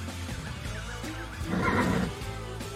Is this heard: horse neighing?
yes